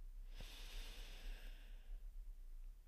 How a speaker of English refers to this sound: And you already know, before we get into the episode, we're going to do some breathing, and we gonna say our affirmation. All right, breathe in,